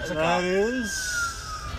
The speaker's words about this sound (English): We got another siren coming in. This is a serious thing. That might be the Amber was following the chase. Somebody had a wreck. That sounds like an ambulance. Yeah, that's a cop.